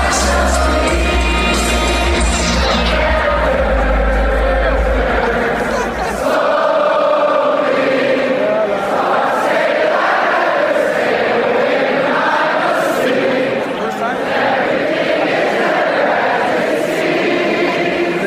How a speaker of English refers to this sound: They played this inside the stadium, and I thought it was so cool. The whole crowd kept singing after it was over that I thought, dang, is this rehearsed? Do they do this every game? Here's the clip.